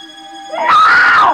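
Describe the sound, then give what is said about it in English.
A woman's shrill, terrified scream in a film scene as she runs to the front door swells suddenly after a thin sustained tone, loud, holding at full intensity for nearly a second before breaking off. “She runs screaming to the front door and crashes into Brandon entering.”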